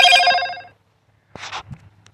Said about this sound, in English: But that all being said and done, I apologize for the ringtone stuff going on here. They turned it off real fast.